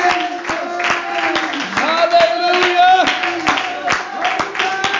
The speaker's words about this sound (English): Oh, let's clap our hands unto the Lord and give Him praise.